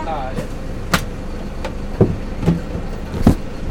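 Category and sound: vehicle, inside a moving bus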